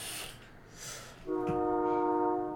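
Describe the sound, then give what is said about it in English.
A train horn sounds from far off, a single sustained chord-like blast rising out of soft background noise and holding steady for over a second before easing. “Is that a train? Yeah. You can hear that shit from over here?”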